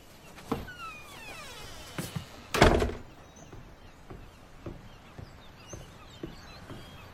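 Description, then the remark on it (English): A door shuts with one heavy thud partway through, its boom fading quickly, while faint birdsong chirps early on and small knocks tick quietly in the background. “I kind of pictured your dad opening the door. Could you shut it and go get him?”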